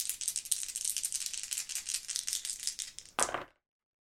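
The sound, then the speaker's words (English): Dice rattle steadily for about three seconds in a fast, bright clatter of hard clicks, then a final louder burst as they are thrown, followed by silence. The dice are an action die and two challenge dice rolled in a roleplaying game, landing on a 9 and on a 5 and a 7. “We've got a 9 on the action die, and we've got a 5 and a 7 on the challenge dice for a strong hit.”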